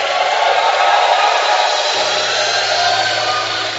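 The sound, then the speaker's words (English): An audience at a church worship service claps and shouts together in a loud, continuous roar of applause and cheering, a dense wash of noise that holds steady for the whole clip without letting up. “I think you can do better with that hand clap. Now add a shout to it.”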